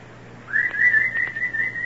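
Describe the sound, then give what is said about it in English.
A single sustained human whistle calling the dogs, steady in pitch with slight wavering, starts about half a second in and holds to the end, clear over a low steady hum. “Call the dogs”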